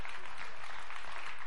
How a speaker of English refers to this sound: You ready to applaud? That's a good time.